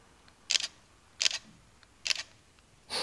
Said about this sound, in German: Das ist schon vom Knäppchen. Vom Knäppchen, auch schon vom Auslesen, vom Shutter. Das ist schon eine andere Sensation, wie ein Handy zu drücken. Das ist schon ein anderes Gefühl einfach. Ne? Das klingt mir satisfying.